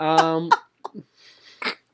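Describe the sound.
A fairly loud sneeze: a drawn-out voiced intake breaking into a sharp burst, followed by a few short breathy sounds and a final airy puff.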